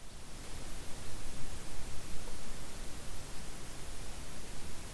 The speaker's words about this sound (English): Well, it's not completely quiet. What are we hearing here exactly? Well, the hissing you're hearing is actually electrical noise on my recorder.